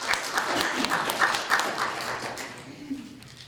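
A room full of people applauds, a dense patter of many hands clapping at once that holds steady, then thins and fades toward the end.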